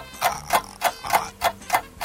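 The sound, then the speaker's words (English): A game clock timer set to 30 seconds ticks in a steady, fairly quick rhythm during a category game, about seven sharp, bright clicks in two seconds, with no voices over it. “I would like you to put 30 seconds on the clock.”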